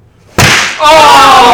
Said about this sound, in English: Oh! Ow! Dude, I know. This finger got slapped like that. Haha. I actually hurting. Didn't get fast enough.